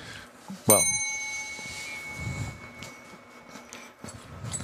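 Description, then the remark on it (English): A single sharp bicycle bell ding rings out, its bright metallic tone sustaining and slowly fading over a few seconds amid faint background noise and brief murmuring voices. “Well, you're supposed to ring the bell.”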